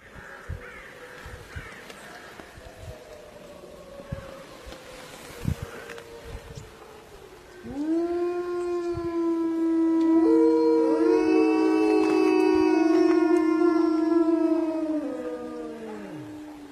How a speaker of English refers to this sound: I'd like to share some audio from a video I found on Facebook of three wolves howling together